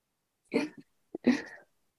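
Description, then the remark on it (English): A puppy gives two short, yelping whines a moment apart, clear, with a brief squeak between them and no talking around it. “And puppies too.”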